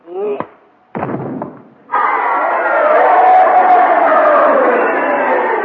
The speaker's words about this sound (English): This is the way the crowd wanted it to end. You heard them cheering, didn't you?